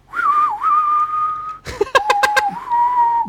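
A person whistles the tune from the film The Good, the Bad and the Ugly: a long sustained note with a swooping dip, a burst of sharp clicks and breathy accents, then another long held whistled tone, clear.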